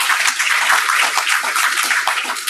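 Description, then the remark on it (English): A crowd applauds steadily, many hands clapping in a dense, crackling wash that holds at an even, fairly loud level from start to finish with no voices. The applause honors the inventors of a saliva-based COVID-19 test. “And I can tell you, that does deserve a round of applause.”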